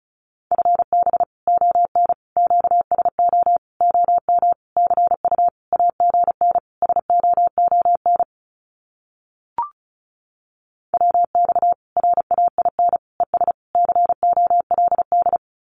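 Fast Morse code at about 35 words per minute sending common QSO phrases: a single steady mid-high tone keyed in rapid dots and dashes, in two long runs separated by a pause with a brief click.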